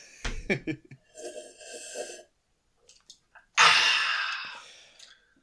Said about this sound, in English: Speaking of looking forward to things, I'm just going to take a sip of delicious Splash Cola.